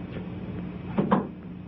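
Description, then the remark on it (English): A hospital room door, started as a slam but stopped halfway, is eased shut slowly, ending in two soft, muted knocks, set against a steady low room hum with no talking. “He starts to slam the door, but stops halfway and closes it more slowly.”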